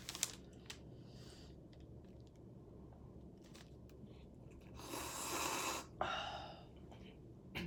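human body sound, coughing

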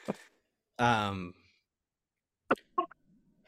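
human body sound, coughing

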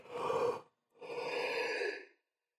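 human body sound, yawn

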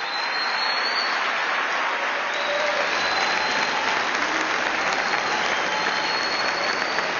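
crowd, crowd standing ovation applause

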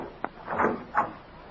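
household object, door opening

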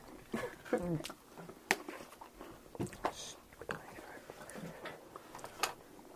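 human body sound, chewing

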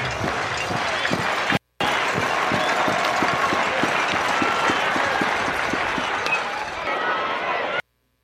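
crowd, cheering crowd

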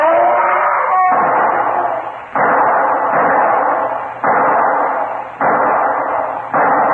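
sound effect, pistol shots

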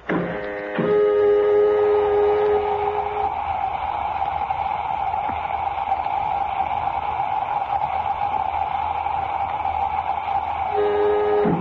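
machine, airlock filling with air

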